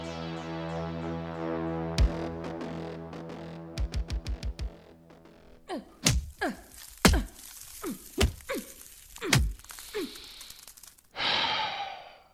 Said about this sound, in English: This is useless. How many punches do you think it'll take to get through a concrete wall this thick?